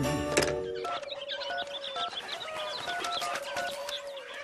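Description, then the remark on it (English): A busy mix of birds calling and cooing fills the air, with rapid overlapping chirps and tweets throughout and a brief harsher squawk near the start; no one speaks. “Yes, I got the calling birds. Yeah, the man just dropped them off.”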